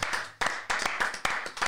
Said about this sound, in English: Gentlemen, give yourselves a round of applause.